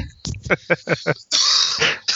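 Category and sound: human body sound, coughing and throat clearing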